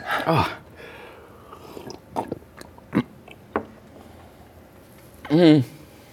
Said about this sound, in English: Let's take a drink together. Okay. Milk. Milk.